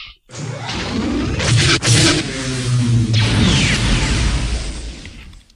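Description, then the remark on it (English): Loud crunching and chewing of a fresh chocolate-covered pretzel fills the whole stretch, with rough, noisy bites and a sharp crack near the start, and no one speaking. “You realize every segment of this podcast, of this episode, is going to have chewing.”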